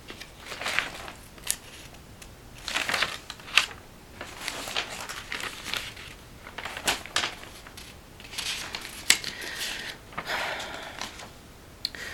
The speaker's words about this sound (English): You know, a lot of times I'm flipping through my notebook. So if you hear, that's my pages turning.